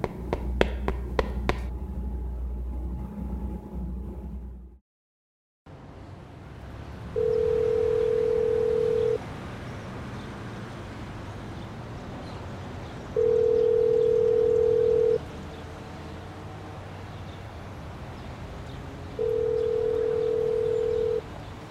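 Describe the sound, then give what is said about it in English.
A few quick taps are followed by a brief silence, then a telephone ringback tone on an outgoing call that goes unanswered sounds three times, each steady buzz lasting about two seconds with long pauses and faint line hiss between. “Why aren't you answering your phone?”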